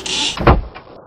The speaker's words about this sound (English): Please, I beg you. Won't you shut the door? The rain's beating in.